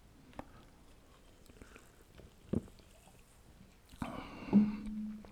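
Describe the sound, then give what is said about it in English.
Quiet mouth sounds: a few small clicks and taps, then a brief slurping sip of water with a swallow near the end. No one speaks. “I'm going to sip of water.”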